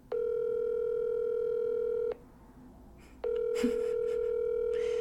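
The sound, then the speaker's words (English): An outgoing phone call rings: a steady electronic ringback tone sounds for about two seconds, pauses briefly, then starts again, clear over a faint background hiss. “Answer your phone now.”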